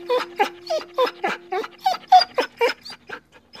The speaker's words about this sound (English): So they had to tie the dog there because the dog won't let the Buddhist people go near, right? They had to tie with the two chains there. Dog was crying.